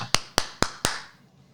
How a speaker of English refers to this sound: You give us a clap because your audio is the one that matters. I've got the clap and I'm giving it to you. As I talk over the clap. Talk over the clap.